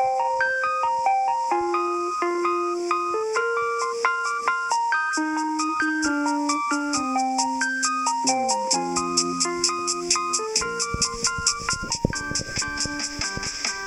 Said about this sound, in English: Oh, and the school bell says it's time to switch classes.